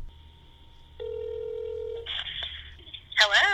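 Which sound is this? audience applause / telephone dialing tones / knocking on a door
telephone dialing tones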